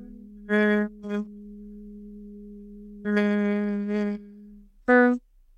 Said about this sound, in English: So we're going to hum. Let's inhale and we'll hum two times. Hum.